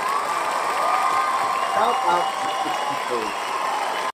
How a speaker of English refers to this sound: But outside of all that, Christian Cage, dude. Hey, let me give this dude a round of applause.